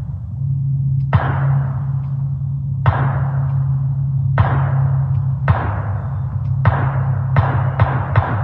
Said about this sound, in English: So if you're paying close attention, you can hear it hitting the metal target. The ping. They're like a neighbor was just out there plinking, which you can do, which is fine.